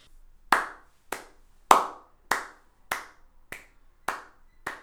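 A single person claps hands in a slow, steady beat for someone to rap over, about eight sharp, crisp claps spaced evenly apart, each ringing out briefly with no voices.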